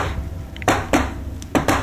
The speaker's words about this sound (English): We knock again? Yeah. Yeah. I'll give it another secret knock.